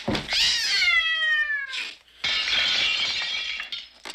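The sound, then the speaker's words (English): A cat lets out a single long, drawn-out meow that slides downward in pitch, then jumps through a window: after a brief pause comes a loud, sustained crash of shattering glass. No one speaks. “Yeah, at this stage, more ordinary cat's ownership stuff as it jumps onto his lap and then through a window, never to be seen again.”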